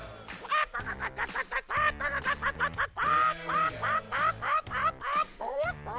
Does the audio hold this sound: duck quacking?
yes